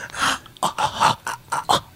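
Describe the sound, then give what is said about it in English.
A voice imitates exaggerated, anime-style heavy breathing: a run of loud, breathy huffs and gasps in quick uneven rhythm, about seven bursts in two seconds, with no words spoken. “I just like anime for the breathing. Oh. Because they always have that.”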